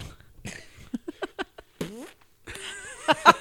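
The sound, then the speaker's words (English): A string of loud fart-like 'ear fart' noises through headphones: several short sputtering bursts, a squeaky rising blurt, then a longer buzzing rasp that ends in two louder pops. “has another ear fart.”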